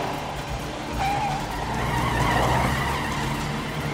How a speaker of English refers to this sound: And he fucking hauls out of there in a, like, 90s Taurus station wagon. Come on!